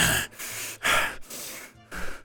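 Heavy, loud panting, with about five rapid, raspy breaths in and out in an uneven rhythm. No one speaks.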